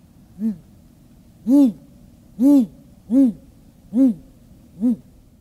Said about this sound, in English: And to round out our owl choir, here's what a great gray owl sounds like.